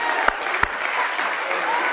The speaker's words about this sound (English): Hallelujah. Hallelujah. Give God a hand clap.